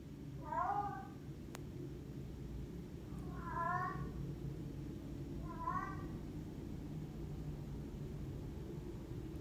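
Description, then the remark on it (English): A female cat in heat yowls three times, each a drawn-out, wavering cry spaced a couple of seconds apart, over a steady low background rumble. “Just play a little bit of the noises she was making while she was in heat.”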